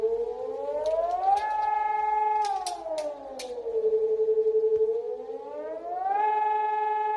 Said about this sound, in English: I'm only aware of one town in the whole region, Wuppertal, where the alert sirens were sent off.